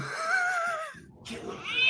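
A cat gives a drawn-out, wavering meow that fades, then a second rising cry follows over a rough, noisy background, sounding like it comes from a played video.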